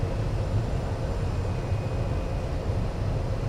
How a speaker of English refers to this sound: We're just 1 mile to the north of Luss, slowing the aircraft down now.